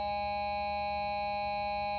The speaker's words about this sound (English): That worked out perfectly. And we beat the bell this time. That's a great buzzer to close off this week's Green Wave Coaches Show.